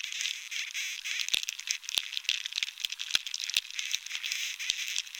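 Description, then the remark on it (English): Dunn's recording of bark beetles boring inside a moderately infested pinyon tree: a steady hissing crackle with sharp, irregular clicks and ticks popping out every second or so, like a faint rattle or patter. “Here's Dunn's recording of a moderately infested tree.”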